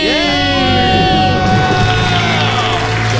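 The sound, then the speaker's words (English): A few people give a debt-free scream together after paying off $245,000 of debt, a loud, sustained celebration, their high voices rising and wavering in pitch for about three seconds without pause. “Let's hear a debt-free Ready? Scream.”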